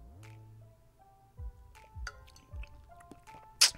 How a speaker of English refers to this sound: Get that spilling tea on myself. Luckily, it's a moisture wickening workout shirt, so it's gonna dry up real quick. That joint is hot, yo. I ain't even have to put that in the thermal. I done burnt my tongue.